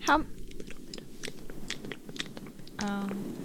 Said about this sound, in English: this one here is a lot of the smacking sounds of the mouth. She's got this furry fuzzy thing on the microphone and she's like rubbing it so you can hear that of that, and she's talking and it's just simply words of encouragement.